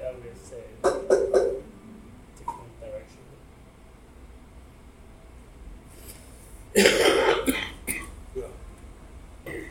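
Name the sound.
smoker's cough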